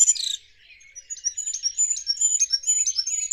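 A very high-pitched, tinkling song of a songbird with a golden crown: a rapid series of thin, bell-like notes and trills, clear, with a brief pause near the start and no voices.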